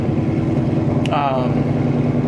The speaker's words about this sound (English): Whoa, hey, buddy. What kind of car do you think that is? One without a muffler. Yeah, he needs a muffler, dude.